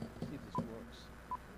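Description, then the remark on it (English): Two short electronic beeps of telephone keypad dialing tones, spaced apart, as a studio phone line is checked to see if it works, over a muffled background with faint indistinct voice-like sounds. “I know we've had a lot of in-studio guests in recent days, but sometimes you got to see if the phone works to make sure that people can chime in at any given time.”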